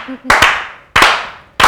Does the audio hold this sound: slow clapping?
yes